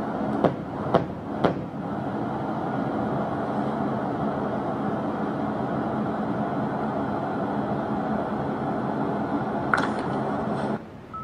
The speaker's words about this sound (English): This time I'm going to pound on the wall, okay? Should sound a little deeper.